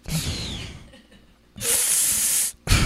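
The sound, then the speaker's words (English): A voice imitates a man's breathing sucked in through the teeth and a dry mouth: a fading hiss, a pause, then a long, loud hissing inhale and a short final burst, with no words spoken. “Like the breathing in through the teeth, through the dry, veneered, dry mouth, Adderall filled mouth.”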